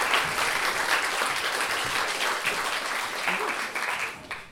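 A crowd at a storytelling event applauds the next storyteller steadily for several seconds, a dense wash of many hands clapping at once that stays loud throughout and begins to thin out near the end.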